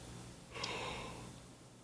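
A single breathy yawn, a soft drawn-out rush of air that swells quickly and fades over about a second, with no talking around it.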